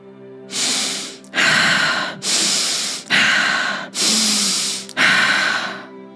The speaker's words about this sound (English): If you feel it in your gut, if you feel that frustration, that anger, whatever is rising, if you feel it in your gut, your chest, your heart, your head, your shoulders, wherever it is, we're breathing, we're directing energy, the air, to that space.